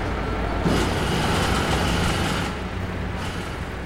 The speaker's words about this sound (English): So we had all of these really aggressive sounds. I put, you know, I made a really aggressive New York. Yeah. You know, of course. I had some jackhammers, I had the train, I had all sorts of stuff.